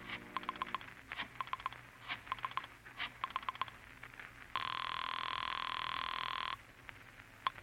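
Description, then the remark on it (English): A telephone bell, a private phone at a club being called, rings in quick rattling bursts, several in succession, followed by a steady sustained ring for about two seconds, then another brief trill. No one speaks. “Once you reach your apartment, you dial Julie's private phone at the club.”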